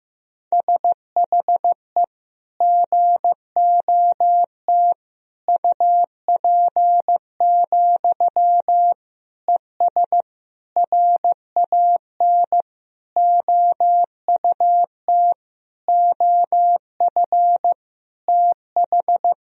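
Morse code sentences built from the top 500 words and abbreviations, tapped out as a single mid-pitched tone at 15 words per minute. Short and long beeps are grouped into words with brief gaps, running at a steady pace with no voices.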